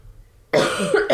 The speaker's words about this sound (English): Sorry about the coughing. Can you not do it on the podcast? I mean, choke. Like, you can cough.